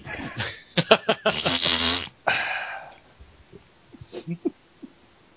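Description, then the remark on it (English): A voice blows a loud, buzzy raspberry that imitates a fart, after a few short puffing noises, then a breathy exhale trails off into quieter scattered clicks. “Wrote fart sound in brackets for that one.”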